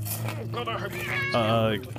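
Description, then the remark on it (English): Cats meow, a couple of rising, drawn-out cries in quick succession, the second longer and louder, over a steady low background hum. “Why are there so many cats in here?”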